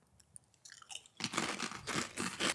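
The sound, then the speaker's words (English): Loud crunching of thick ridged potato chips being chewed, starting with a few light crackles then breaking into a dense, repeated burst of crisp crunches, with no talking. “Pretty sweet. Super sweet. Super crunchy.”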